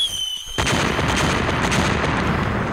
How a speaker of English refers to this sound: Now that you mention it, those bombs are very real.